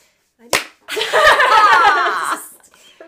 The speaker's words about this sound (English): So if you want to clap. But you guys just did a clap. You could do it.